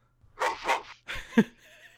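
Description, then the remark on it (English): A person imitates a dog barking with two quick woof-like bursts followed by a rougher third bark, voiced loudly and alone, with no other talk. “I just barked.”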